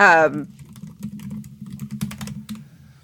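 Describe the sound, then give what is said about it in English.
Rapid typing on a MacBook Pro laptop keyboard, with the mic right up against the keys, giving dense irregular clicks and a low hum underneath, following a brief voiced sound at the start. “I decided I'm going to put the mic right up against the MacBook Pro keyboard.”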